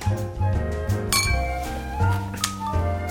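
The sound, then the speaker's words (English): Beer glasses clink together in a toast, a couple of bright taps with a lingering ringing tone, set against a steady background hum with no talking. “Cheers, buddy. Cheers. Clink.”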